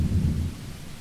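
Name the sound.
thunder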